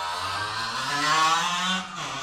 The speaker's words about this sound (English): One second for the moped to go past. I live on a main street, listeners.